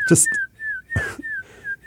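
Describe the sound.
A person whistles a string of short, sliding tones imitating birdsong as faux bird sounds during an interview, each note dipping slightly in pitch, with brief breathy bursts and soft clicks between phrases.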